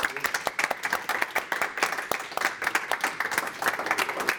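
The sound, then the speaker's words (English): An audience at the Michelle Miao Show applauds for Mano, with dense, overlapping claps forming a steady crackling wash that holds at an even level for several seconds without any talking. “Let's give a round of applause for Mano.”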